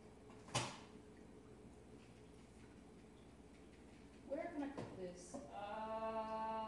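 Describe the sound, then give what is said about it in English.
A fridge door opens with a sharp click early on, followed a few seconds later by rattling and a soft thud as it swings shut, as someone puts something into the fridge. “All right, let me put this in the fridge.”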